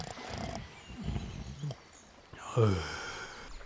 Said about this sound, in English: Oh, what are you? You were snoring. Again.